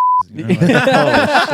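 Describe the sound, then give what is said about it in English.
A loud, steady censor bleep sounds for a fraction of a second at the start, then cuts straight into voices talking with a bit of chuckling. “We can edit that. Just beep it out. Yeah, bleep it out.”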